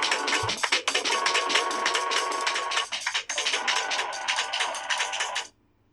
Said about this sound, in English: That sounds like a fucked up dryer or laundry or the little popper thing, like preschooler toy, like popcorn popper thing on wheels.